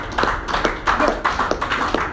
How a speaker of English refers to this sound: So, it's a good place to clap.